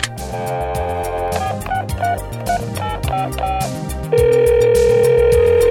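A phone call being placed: a quick run of short dialing beeps, then a loud, steady ringback tone from the line, over a busy background of music.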